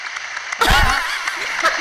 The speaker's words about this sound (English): Wow, your very own applause track. Do you have an app for that? No, I just looked it up on YouTube just now.